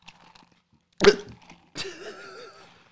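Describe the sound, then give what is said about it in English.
A single sharp hiccup, brought on by eating spicy food, jolts out of near silence, followed moments later by a strained, wavering vocal groan that fades away. “It's really not that bad. Just makes you hiccup.”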